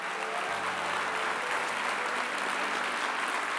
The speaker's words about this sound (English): And listen, the reason that we can confidently rejoice, we can all clap in rejoicing together, is because at one point of his life, Rick stopped trusting all the things of this world